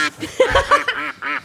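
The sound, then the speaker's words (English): A person imitates an angry duck, letting out a quick series of harsh, nasal quacks, about four or five loud bursts with a slightly laughing edge. “It's just this really angry duck.”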